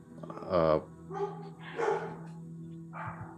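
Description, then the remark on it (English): Dogs barking in four separate bursts, spaced unevenly across a few seconds, moderately quiet over a steady low hum. “There goes those dogs.”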